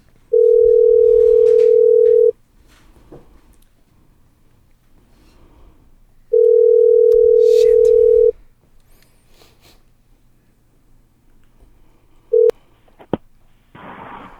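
A phone line's ringback tone on an outgoing call: two steady two-second rings separated by a pause, then a brief clipped third ring and a rustle as the line connects.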